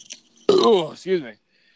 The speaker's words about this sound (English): Oh, I'm so sorry for burping you in your ear. I'm sorry. Oh. Burping my ear. I'm so sorry. My fault.